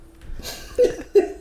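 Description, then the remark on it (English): Two short, muffled coughs about a third of a second apart, each a quick breathy burst, after a stretch of soft breathing and rustle. No one speaks. “Nigga, I had to cough, nigga, and I didn't want to get up and knock all this shit, bang all the shit all around.”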